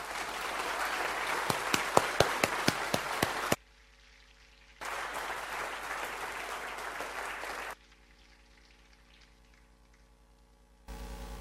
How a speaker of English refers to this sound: Can you please give a good, substantial round of applause to our first speaker, Lord Maurice Glasman.